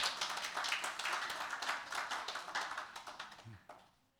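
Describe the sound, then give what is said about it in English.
A small group claps together for about four seconds after a member shares something, a steady patter of hands that thins out and fades away at the end, with no talking. “You can clap, yeah, if you want to clap.”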